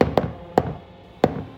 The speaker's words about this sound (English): But before Lester could finish, another knock on Gwen's closet door interrupted him.